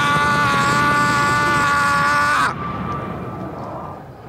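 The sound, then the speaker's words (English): A helicopter drones loudly, its steady engine whine and rotor hum filling the air, then the sound abruptly turns duller and softer as it continues. “And then there's a duck and there's a helicopter shows up.”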